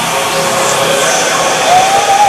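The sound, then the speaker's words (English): A loud, dense roar of crowd cheering holds steady for a couple of seconds, with a thin whistle sliding upward near the end. “I love my parallel universe crowds.”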